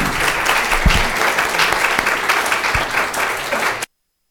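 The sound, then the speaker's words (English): An audience at a panel discussion claps steadily for two speakers for a few seconds, a dense, bright wash of many hands with no voices, ending abruptly. “Let's give a quick round of applause for these two speakers.”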